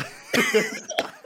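A person coughs harshly after drinking a shot of a brownish deep purple drink, a strong rasping cough followed a moment later by a second, shorter one, with no talking.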